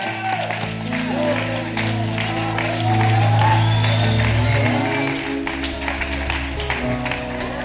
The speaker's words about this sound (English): Can y'all open up your mouth and praise God right now? Can you clap your hands?